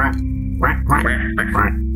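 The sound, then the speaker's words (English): A person imitates a little duck with a few nasal, raspy quacks in quick succession, fairly loud, each burst short and buzzy with a steady low hum underneath. “I forgot I could do this, I say to myself, and I just, I summon a familiar, but it's a duck, a little duck.”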